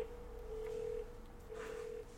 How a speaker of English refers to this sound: Are you getting a phone call? Who? Getting a phone call, guys. Who's calling you? Is that the Buffalo Bills on the fraud phone?